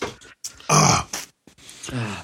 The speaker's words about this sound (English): As soon as you started playing that, I was like frantically hitting tabs and soundboard trying to find the burpee burp. Burpee burp.